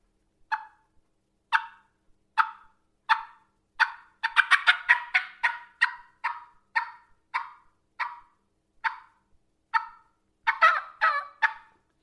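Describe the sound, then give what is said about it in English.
A turkey call imitates a hen's fly-down cackle: a run of sharp, clucking notes that speeds into a rapid flurry, then slows, ending with a few yelps. Clear, with no talking. “And I ended it with a couple yelps there at the end.”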